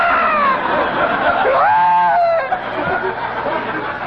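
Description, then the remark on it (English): A voice imitates the long, wailing scream of a kid who grabbed a hot wire, a high drawn-out cry that rises and wavers for a few seconds before trailing off into quiet background noise. “And then every once in a while, you'd hear the long, wailing scream of a kid who got a hold of one of those hot wires.”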